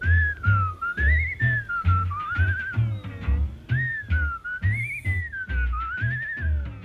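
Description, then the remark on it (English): A person whistles a wavering, continuous melody with bright vibrato, carried over a steady thumping low beat; clear and fairly loud throughout, with no talking. “It broadcasts over 12 nights a comparative study of whistles, including whistles that your high school track coach favored when he was in a bad mood, and that guy up the street who can whistle like nobody's business.”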